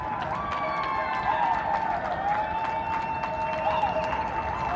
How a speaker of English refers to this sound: It's no surprise New Yorkers are standing together and supporting one another. And like many cities across the world, at a set time every night, they head to their balconies and start applauding.